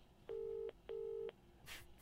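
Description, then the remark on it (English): Two steady, mid-pitched telephone tones, each lasting under half a second with a brief gap between, like a phone line connecting as the next caller is called in, followed by a short soft burst of hiss. “I think we should have another call. So let's call it in.”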